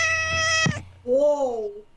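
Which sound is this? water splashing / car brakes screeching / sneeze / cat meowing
cat meowing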